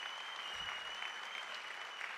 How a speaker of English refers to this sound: Can you welcome them as they come out and join me here on stage? Give them a big clap, these strapping men, as they join me here on the platform. Come on, give them a big clap.